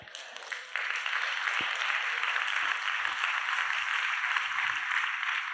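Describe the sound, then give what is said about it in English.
An audience breaks into steady applause, many hands clapping in a dense, hissing wash that swells after a brief start and holds at an even level throughout, with no voices over it. “I'm going to say it again because you clap.”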